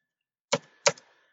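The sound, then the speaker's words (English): Two crisp keystrokes clack on a computer keyboard about a third of a second apart, each with a brief rattle, followed by quiet. No one speaks. “Yeah, type it in quick.”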